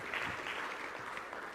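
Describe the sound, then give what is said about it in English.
An audience, including family and fans, applauds a speaker who is welcomed to share his story of football and faith, with steady, dense clapping that holds at an even, moderately loud level throughout. There is no talking, and no distinct shouts or cheers stand out from the clapping. “They're going to cheer him on.”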